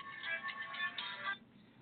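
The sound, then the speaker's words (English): A backup phone's ringtone plays a quiet, bright electronic melody of rapid high-pitched tones for just over a second during a live radio interview, then cuts off, leaving faint hiss. No one speaks. “I have a backup phone here in case the system crashes and somebody called me during this time.”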